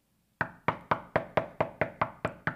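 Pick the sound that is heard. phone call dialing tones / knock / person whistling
knock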